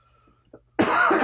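A loud, harsh cough bursts in close to the microphone after a brief quiet moment, rough and raspy, filling the last half second with no talking over it.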